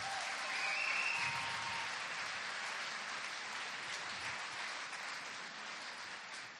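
Steady audience applause fills the whole stretch, a dense wash of many hands clapping at an even loudness, with a brief cheer or whistle early on and no talking over it.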